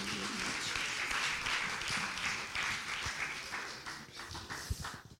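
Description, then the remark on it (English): A seated church audience claps together in sustained, dense applause as a hand clap of praise to the Lord, a steady wash of many hands that holds strong before trailing off at the end, with no voices over it. “Can you give the Lord a good hand clap of praise as you're seated tonight?”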